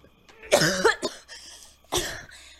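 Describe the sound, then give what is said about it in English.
A person imitates the wet, retching cough of someone coughing up lake water: a loud, strained gagging heave followed by a shorter second cough, alone with no talking. “you take a moment and just sort of retch forward and cough up some lake water.”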